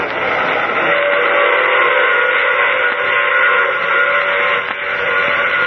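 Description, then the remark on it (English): A loud, sustained steam train whistle blows continuously for several seconds, its bright, layered chord holding steady with no talking. “I take this same train every week at this same time.”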